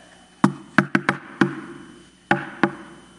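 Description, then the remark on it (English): A quick, bouncy pattern of seven knocks on the wooden door of a house, sharp, played in a lively shave-and-a-haircut style rhythm with a short pause before the last two raps. “Let's say I come to your house and I knock like this.”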